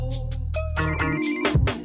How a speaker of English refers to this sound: That phone ringing is hard.